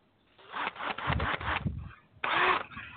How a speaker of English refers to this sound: Got the drill for you next time you do that. Oh, sorry. Oh, damn. Is that Black & Decker? It's Skill. Okay, but at any rate, he's got a damn drill.